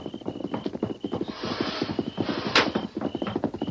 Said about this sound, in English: What's that? A horse?